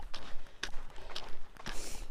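Steady hiking footsteps crunch along a trail while someone hikes, about one every half second, with a few sharper taps of hiking poles striking the ground. Fairly soft, with no talking.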